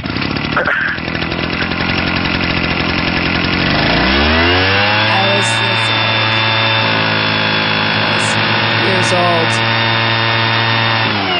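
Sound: leaf blower sound effect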